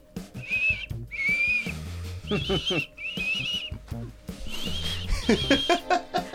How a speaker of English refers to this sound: But yeah, sometimes I whistle. I found mumbling inspires more creative shit than just whistling.